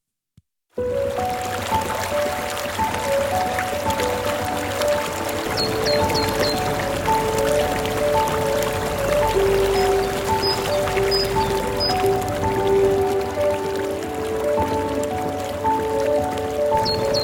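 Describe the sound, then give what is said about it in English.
The Zagactos River at the ruins of Philippi rushes and gurgles steadily for the whole stretch, fairly loud, with a few faint high bird chirps above the flow and no one talking. “I thought you might enjoy seeing what people see when they go to the ruins of Philippi at the Zagactos River.”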